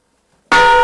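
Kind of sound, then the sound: signal or alarm, bell being rung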